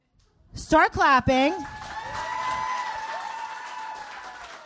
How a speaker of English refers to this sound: Start clapping for my co-host, my best friend